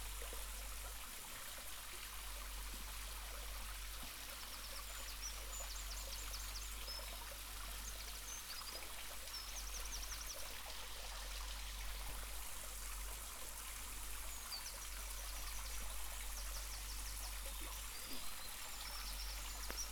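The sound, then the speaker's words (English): A steady, unbroken rush of a stream running through a sandstone gully in the woods fills the whole recording, a broad hissing trickle with no pauses, while faint chirping birdsong flickers above it; recorded while walking beside the gully. “Walking next to a sandstone gully with a stream running through the woods.”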